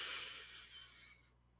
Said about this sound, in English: We have to do our deep breathing. So let's breathe in through your nose.